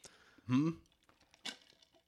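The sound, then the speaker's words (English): A brief sip of coffee: a short wet slurp with a throaty swallow, followed about a second later by a second softer, breathy slurp, with quiet mouth noises in between. “Get a little coffee sip.”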